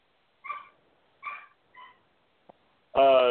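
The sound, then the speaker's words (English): A dog gives three short, high whimpering yelps, then after a brief tap lets out a loud, sustained whine at the end. No one is talking. “And the dog, I'm sorry”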